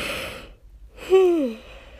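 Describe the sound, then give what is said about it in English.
A single human yawn: a breathy inhale, a brief pause, then a voiced, drawn-out exhale whose pitch slides downward and trails off. “I couldn't hold that yawn in.”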